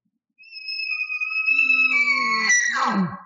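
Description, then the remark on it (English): An elk bugle call, not an alarm type of bugle: a long, steady, high whistling tone held for about two seconds, then breaking into rough, lower grunting notes at the end. Loud and alone, with no talking. “That right there is not an alarm type of a bugle. That is more of, come on over this way.”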